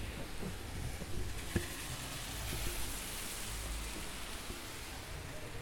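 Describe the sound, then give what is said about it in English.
Heavy rain pours down in a dense, steady hiss, with cars swishing past on a wet road beneath it. A low rumble rises and fades, and there are no voices. “Can you hear the cars, by the way? They're driving by. You can hear the water and the rain.”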